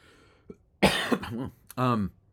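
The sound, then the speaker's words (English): A loud cough bursts out, followed by a short rasping hack and a brief voiced, throaty sound, all heard alone without speech. “I was going to do the dramatic pause and then speak, and then I coughed, of course.”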